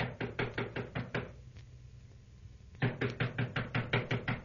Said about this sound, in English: Well, it's like this. I've been knocking on the door, and she doesn't answer.